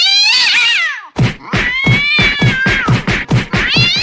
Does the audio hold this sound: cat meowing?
yes